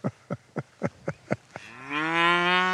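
Six short, evenly spaced thuds or grunts, then a long, loud, low moo from cattle on a cattle drive that holds steady and swells slightly toward the end. No one speaks.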